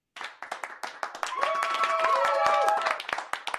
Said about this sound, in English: Isn't that fun? Round of applause.